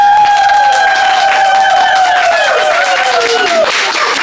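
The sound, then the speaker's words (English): A live crowd claps and cheers loudly and steadily for a few seconds, with a sustained high whoop or whistle sliding downward in pitch above the dense applause. “remember these screams and claps”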